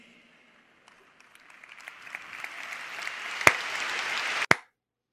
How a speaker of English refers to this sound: Wow, slow clap. Gary Vee. I don't know who Gary Vee is, but he had an entire stadium there, you know, thrilled to see him.